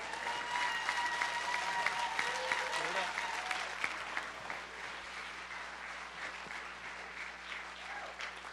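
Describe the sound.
An audience bursts into sustained applause for a bishop, dense hand clapping continuing steadily for several seconds, with faint voices and cheers mixed in under the clapping.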